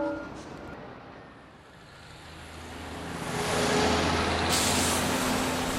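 A heavy-duty diesel truck rumbles, its engine growing louder, then a sharp hiss of air brakes cuts in near the end. No one speaks.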